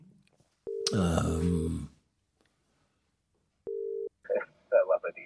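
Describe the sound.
A steady electronic telephone ring tone sounds twice, a long burst followed by a shorter one after a pause, with a rush of noise over the first ring and brief talking at the end.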